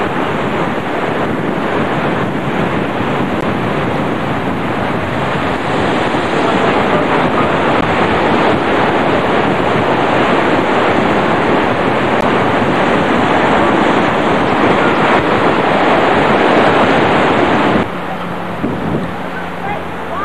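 A steady, loud roar of ocean waves breaking on the shore, mixed with wind rushing across the microphone, easing abruptly near the end.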